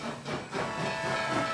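A train's steam whistle blows in one sustained, steady blast, its pitched tone riding over a loud wash of hissing steam, with no voices.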